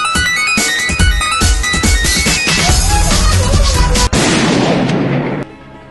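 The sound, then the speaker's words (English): A gunshot sound effect: a loud, dense burst of booming impacts, like rapid gunfire or artillery, with sharp cracks over a rumbling wash that keeps going for several seconds before cutting off abruptly. “if I had the gunshot to hand, I could shoot him just as quickly, actually. In fact, I suppose I could do this.”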